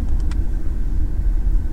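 Steady, loud low rumble of a car driving, heard from inside the cabin, continuous road and engine drone with a couple of faint clicks near the start and no voices.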